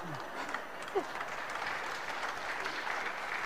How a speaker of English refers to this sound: That's twice I've sung today. I thought I might get some applause or something.